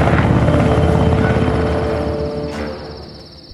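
A Black Hawk helicopter flies overhead with a steady, loud thumping rotor roar and a high turbine whine, the broad rumble slowly fading over a few seconds. No one speaks.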